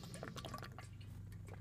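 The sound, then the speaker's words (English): Someone takes a few quiet sips and swallows of water, with soft liquid slurps over a low steady hum and no talking. “Sorry, I had to get a drink of water.”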